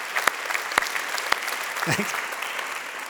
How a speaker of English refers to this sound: You guys realize you guys are just applauding for yourselves.